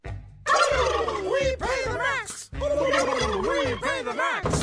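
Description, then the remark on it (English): A flock of turkeys gobbling loudly and continuously, overlapping warbling calls rising and falling in quick bursts for several seconds, with no talking. “Yeah, those turkeys are saying they pay the max,”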